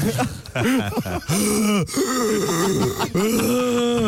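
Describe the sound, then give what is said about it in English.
A voice makes loud, exaggerated groans and moans, rising and falling in long drawn-out tones broken by a few sharp, noisy breaths, continuing for about four seconds. “No, we need to hear your heavy breathing.”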